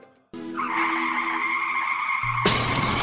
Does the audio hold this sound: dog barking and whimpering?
no